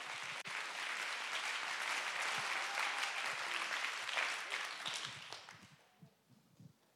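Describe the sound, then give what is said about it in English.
A crowd applauds steadily to give God praise, a dense wash of many hands clapping for about five seconds before it thins out and fades to a few scattered claps. “And that who served, let's clap our hands and give God great praise for that opportunity.”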